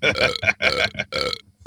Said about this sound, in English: Yeah, we got about 5 burps in there.